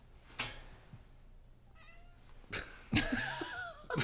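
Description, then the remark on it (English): A cat meows, a few short calls with a longer, louder yowl near the end, separated by quiet pauses and light clicks. No one speaks. “The cat agrees.”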